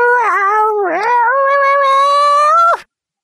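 A single loud, drawn-out cat meow, wavering at first and then holding a steady, strained pitch for nearly three seconds before cutting off abruptly. No one speaks.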